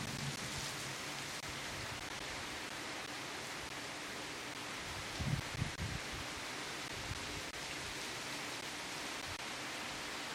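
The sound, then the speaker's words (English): Steady rain falls outdoors, the first rain in two weeks, a dense, even hiss spread across the whole clip with faint patters and a brief low rumble midway. No voices are heard. “I'm going to interrupt this broadcast to bring you a live recording of Rain.”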